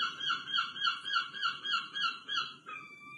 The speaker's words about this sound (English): We'll have the barking seagulls back. Yeah, let's have a little bit of a listen about what we have to put up with during the summer months.